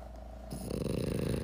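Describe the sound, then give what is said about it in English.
Two dogs snoring, a low, rough, fluttering rumble that swells up after a brief quieter moment and carries on steadily. No one speaks. “Now two dogs are snoring.”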